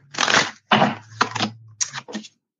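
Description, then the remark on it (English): Playing cards being shuffled: five quick bursts of crisp, papery riffling over about two seconds, each separated by a short pause, fairly loud with a faint low hum beneath and no talking. “I love hearing the cards shuffle.”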